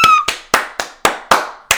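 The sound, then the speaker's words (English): A quick run of seven sharp hand claps in a steady rhythm, loud and crisp, each with a short ringing tail, with no talking. “That was a different clap I gave it, y'all.”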